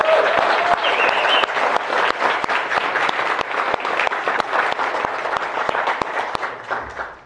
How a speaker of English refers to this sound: I think the panelists deserve a really warm round of applause.